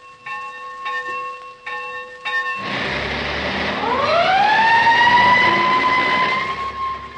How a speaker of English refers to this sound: Why, those are the sounds of a school bell and fire engine, aren't they?